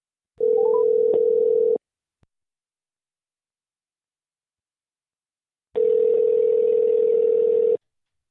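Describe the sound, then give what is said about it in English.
A steady electronic telephone dial tone sounds twice while placing a phone call to a relative in Ohio, each a flat, even hum lasting a couple of seconds, separated by a long silent pause. Clear, with no voices. “She lives in Ohio, and we have her on the phone to play 20 questions.”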